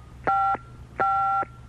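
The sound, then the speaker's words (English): Two short electronic telephone dialing tones, inserted to stage a pretend phone call, each a steady two-pitch beep with a clicky start, separated by a brief pause, with a faint low hum underneath and no talking. “let's pretend we've just rung Simon. We'll insert dial tone.”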